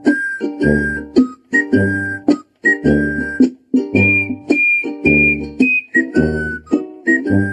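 A tin whistle plays a menacing, march-like melody in steady repeated phrases, loud and close, over a fuller low accompaniment that pulses along with each note.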